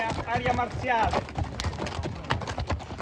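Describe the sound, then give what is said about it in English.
Horse hooves clop steadily on the basalt stones of the Appian Way in the Appian Way Regional Park, in a quick, uneven rhythm, with indistinct voices and crowd murmur in the background. “But during the day, you might hear horses like these clomping along on its basalt stones, as they have for thousands of years.”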